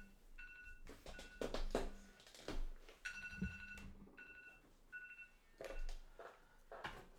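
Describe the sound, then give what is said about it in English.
An electronic alarm sounds in repeated bursts of bright, buzzing tones, interspersed with low thumps and handling knocks, with no one speaking. “Apologies, my alarm buzzing in on a deep moment.”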